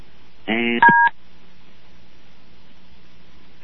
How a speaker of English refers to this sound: And I don't know what that was. Something clicked off on the phone.